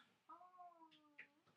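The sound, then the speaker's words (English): A single drawn-out meow from a cat looking out the window, with a steady, slightly wavering tone lasting about a second, followed by a couple of brief soft chirps or noises, heard alone without talking. “Hello, kitty guy.”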